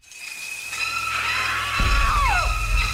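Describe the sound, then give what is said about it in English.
Generic movie-style screams, several overlapping high wails that rise and fall, ending in a descending shriek, with a deep rumble swelling in beneath them partway through. “Here's a short clip of some just general screams that I don't find very believable.”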